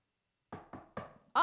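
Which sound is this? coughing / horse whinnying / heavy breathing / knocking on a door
knocking on a door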